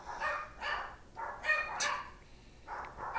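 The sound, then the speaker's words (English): Several household dogs bark in repeated bursts, some sharp and yappy, at moderate loudness with no talking. “Oh, great. My dogs are barking.”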